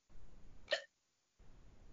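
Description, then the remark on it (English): A single sharp hiccup pops out, a brief gulping catch in the throat over low background hiss, followed by a short silence. “I might have the hiccups.”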